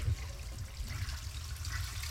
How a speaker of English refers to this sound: There you go. Toilet flushing. There you go. I'm definitely not in the studio.